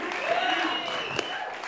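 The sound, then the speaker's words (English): An audience at a New Year's show applauds a DJ steadily throughout, a dense wash of clapping at an even loudness, with faint voices and whoops mixed into the noise. “Let's hear it for him.”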